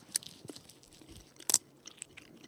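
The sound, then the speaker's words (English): Chewing and crunching of sourwood leaves by several people who bite and chew without swallowing, with a few sharp crisp bites standing out between softer, wet mouth sounds; no talking. “Here on the count of three, we're all going to take a bite and chew, but not swallow, this sour wood.”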